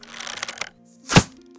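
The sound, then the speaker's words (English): A bow is drawn and an arrow shot at an elk stag in the woods lands true: a brief rustling, creaky stretch, a short silence, then one loud, sharp cracking thwack with a low thud underneath. “So he pulls back his bow.”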